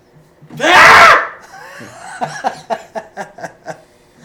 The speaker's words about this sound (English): I wasn't yelling. Okay. That was a yell. No, that was not a yell. Yes, it was.